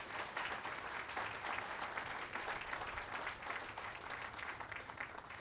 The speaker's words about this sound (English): We would not be here today without Congressman McGovern, and I just want to lead another round of applause on that.